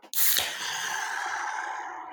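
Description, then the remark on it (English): A Nitro Draft can of Irish style cream ale cracks open with a quick click and a sharp burst, then a steady, bright hiss that carries on at an even level for about two seconds. No one speaks. “Ooh, there's that nitro hiss.”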